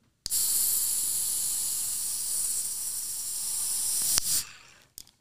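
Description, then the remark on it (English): A nitro beer can cracks open with a sharp snap, followed by a long, steady, bright hiss of escaping gas that lasts about four seconds before tapering off, ending with a couple of small clicks. “Yes, one more quick crack of the can for you.”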